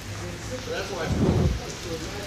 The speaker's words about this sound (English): Hold on, it's raining. I'm walking around. Hold on.